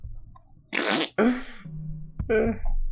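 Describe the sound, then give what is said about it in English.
A loud, raspy fart blasts out in a few sputtering bursts, forceful, with a brief gap before a final trumpeting rip; no one speaks. “So, he just rips one, holding... he's just... Yeah, and it's a very loud one. It's impressively loud. Trumpetous.”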